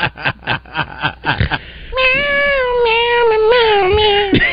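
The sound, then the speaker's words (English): A man in a studio meows like a cat in a string of short, punchy bursts, then shifts into a long, sustained sung meow with wavering pitch as a cover of a song, loud. “Right now in the studio, guy in the office that talks like a cat is doing a cover of one of your songs.”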